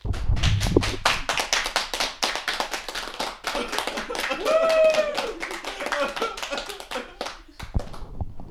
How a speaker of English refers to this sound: And real quick, some uproarious applause, if you will.